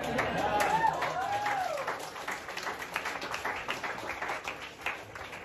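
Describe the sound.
An audience applauds steadily, a dense patter of many hands clapping with crowd murmur, and a voice rising in pitch early on over the applause.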